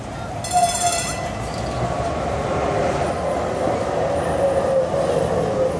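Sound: bus arriving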